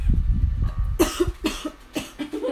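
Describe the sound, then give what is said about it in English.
Several harsh coughs burst out in quick succession from a person who breathed in too fast, loud and raspy, with a low rumbling breathiness between them and no speech. “Everyone's coughing and dying.”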